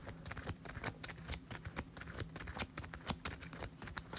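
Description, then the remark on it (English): A deck of cards being shuffled, a rapid series of crisp papery riffles and taps over about four seconds, with no voices; the invocation deck is being reshuffled into a new deck during a card game after running out of cards. “So I'm out of invocation cards. Got to shuffle it, make a new deck, and see what the new one is.”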